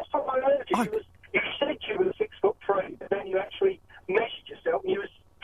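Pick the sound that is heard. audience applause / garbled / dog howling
garbled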